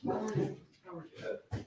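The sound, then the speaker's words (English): Dogs whimper and let out a few short, excited barks in quick bursts as a newly arrived visitor is told to pet them, with people's voices mixed in around them. “clearly doesn't have dogs”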